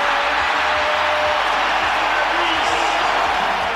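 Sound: arena crowd chanting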